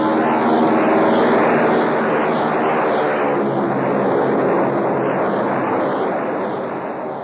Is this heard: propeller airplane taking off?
yes